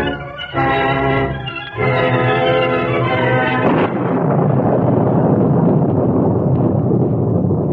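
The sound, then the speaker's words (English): Loud storm wind howls across desolate countryside in torrential rain, beginning with a sustained moaning, tonal howl for a few seconds before giving way to a dense, hissing rush that continues to the end. No voices. “Rain fell in torrents, and the wind howled across the desolate countryside.”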